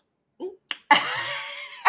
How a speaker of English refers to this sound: Sorry, I burped as soon as I started.